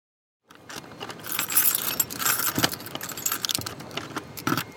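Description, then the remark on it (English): Keys jangle and scrape in the top and bottom locks of a heavy apartment door, with a steady metallic rattle broken by several sharp clicks and clunks. No one speaks. “You have to kind of twist the top lock just the right way and the bottom lock and then kind of push with your shoulder.”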